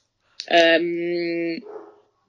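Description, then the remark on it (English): A dog named Columbo lets out one loud, drawn-out bark that stretches into a sustained, tonal howl-like cry for about a second before trailing off, with no other sounds around it. “Can you hear him barking in the background?”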